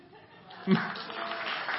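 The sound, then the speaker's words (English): One sharp, isolated clap from an audience snaps out in thanks to the interns, followed by a soft wash of crowd noise and murmuring. “You got one clap.”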